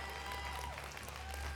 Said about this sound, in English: You don't have to clap.